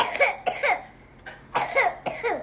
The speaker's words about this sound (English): That's a little cough.